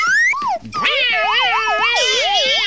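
A loud cat meows in a long, drawn-out yowl whose pitch swoops up and down repeatedly, sounding almost like a wailing tune.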